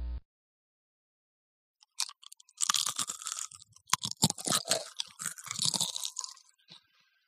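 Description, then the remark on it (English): Loud crunching as someone chews something crisp, an irregular run of sharp crackly bites and grinding over several seconds after a brief moment of quiet, with no talking. “Crunch off.”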